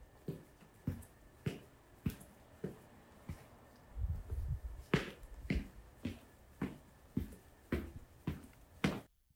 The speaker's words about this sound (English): Record what footsteps sound like.